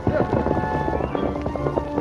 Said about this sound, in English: The Lone Ranger knew that every minute counted. He urged the great horse Silver to greater and even greater speed. Come on, Silver! At a pace that would have killed an ordinary horse, the mighty stallion flashed across the open country